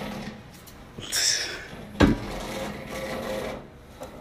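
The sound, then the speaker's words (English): A chair is pulled up, scraping and shuffling across the floor, with a raspy drag around the first second and a sharp knock at two seconds, followed by softer scraping and creaks. “Had to make that as loud as possible. Right, chair noises.”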